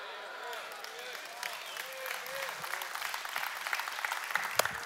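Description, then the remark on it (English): Steady, dense clapping patters on for several seconds, building slightly louder toward the end, while a voice talks over it. “I'll clap for me today.”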